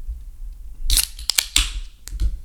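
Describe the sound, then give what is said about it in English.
A 4.9% beer can, illustrated with a man on a Segway, cracks open: a few sharp metallic clicks, then a brief bright hiss of escaping fizz, followed by a couple more small taps. No one speaks. “So let's crack it open.”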